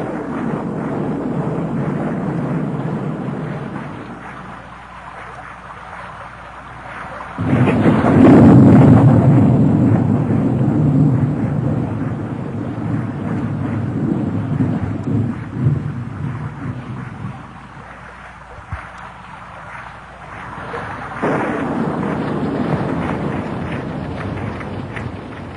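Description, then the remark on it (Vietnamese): A thunderstorm with steady rain drumming on the roof, deep rumbles of thunder swelling and fading, one loud close roll near the start and another building later, no voices. “Thỉnh thoảng vẫn có những làn chớp lóa mắt kèm theo những tiếng nổ lúc xa lúc gần.”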